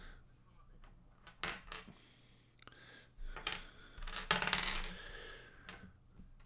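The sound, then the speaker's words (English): Dice clatter and tumble across a hard tabletop in a few quick bursts of sharp clicks, fairly quiet, with a soft low hum underneath, rolled to pick a James Bond film. “So it's the same dice again.”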